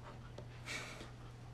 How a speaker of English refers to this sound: Yeah, I don't know if you guys heard that, but our dogs are awake.